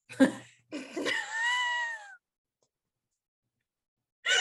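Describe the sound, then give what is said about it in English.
A person mimics a cat's meow: a short yelp, then a long, drawn-out, wavering meow, a pause of silence, and another begins as it ends. “Meow, meow, meow, meow. Like meow, meow, meow, meow.”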